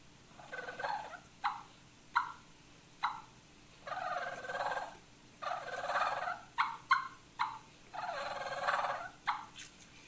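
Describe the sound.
Rolling, gurgling turkey purrs made on a reed mouth call, the tongue pressed against the reeds and the throat gurgling, imitate the bird, longer trills broken up by short sharp clucks in an uneven rhythm, fairly loud with no talking.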